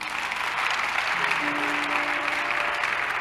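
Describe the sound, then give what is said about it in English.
A crowd applauds steadily, a dense, continuous wash of many hands clapping at once that holds its level throughout, with a faint tonal murmur underneath. “Can you clap again?”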